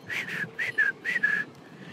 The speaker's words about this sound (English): And then you start to whistle.